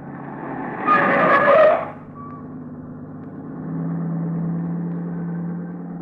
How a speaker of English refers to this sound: That car that just passed. Snappy job, huh?